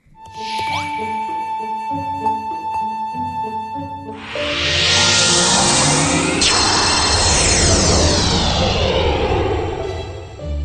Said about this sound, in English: That music's not ringing any 8-bit bells for anybody? Dragon Quest Builders. Yes. Thank you. Yes, Dragon Quest Builders, which is a... very cute game about doing a Minecraft.